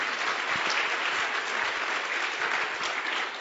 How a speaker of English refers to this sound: You better clap. Amen.